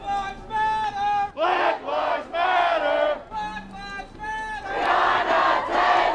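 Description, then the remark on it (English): A large crowd of protesters chants in unison at a demonstration in downtown Atlanta after no murder charges were announced in the killing of Breonna Taylor, voices rising and falling in repeated rhythmic phrases, loud, with the shouts blending into a sustained roar between calls. “And in Atlanta last night, a demonstration took place in downtown Atlanta after no murder charges were announced in the killing of Breonna Taylor, killed by Louisville police officers back in March as they were executing a search warrant.”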